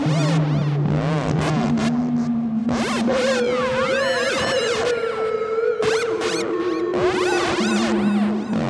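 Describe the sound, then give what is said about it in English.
A Harmonic Shift Oscillator synth module from New Systems Instruments drones on steady tones that step between low pitches, washed in reverb and delay, with swooping, warbling chirps echoing over it. It stays loud and continuous throughout, with no talking. “This oscillator is so much fun. It does so much cool stuff.”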